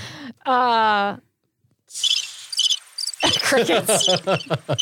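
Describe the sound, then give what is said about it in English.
After a short sustained vocal tone and a moment of silence, a loud chorus of crickets chirps in rapid, pulsing bursts, with someone talking underneath during the final seconds. “Crickets.”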